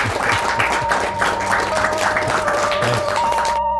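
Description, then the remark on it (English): A crowd breaks into a round of applause for Ron Wimberly, steady, dense overlapping claps that hold at a fairly loud level for several seconds before cutting off abruptly, with a faint tone and murmur underneath. “But so can I get a round of applause for Ron Wimberly?”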